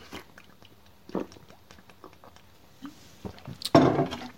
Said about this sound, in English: Just have a little sip of my kombucha. Oh, it's weirdly spicy for some reason.